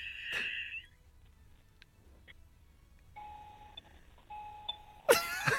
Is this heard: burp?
no